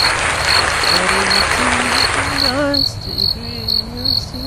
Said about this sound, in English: These crickets go for a long time.